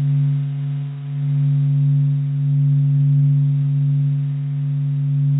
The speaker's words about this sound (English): because in space there are no molecules to carry sound waves to our ears. But there are electromagnetic waves that we can change into sound waves.